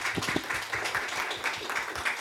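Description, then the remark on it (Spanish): An audience clapping their hands for the Lord in a steady, dense patter of many overlapping claps, fairly loud and continuous throughout, with a faint murmur of voices underneath. “Vamos a dar palmas al Señor por eso.”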